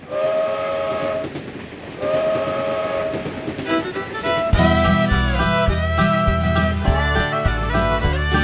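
A train rolls by with a steady, loud rumble, its whistle sounding in sustained tones over the clatter of the cars, with no voices.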